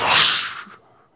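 A single loud, rushing whoosh of surging water, bright and hissy, swelling at once and then fading away over about a second, with no voices.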